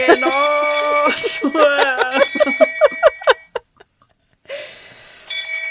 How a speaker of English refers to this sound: My bell won't go. Oh, there it is.